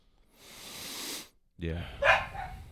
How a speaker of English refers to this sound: Yeah, I'm going to, these dogs are annoying me anyway.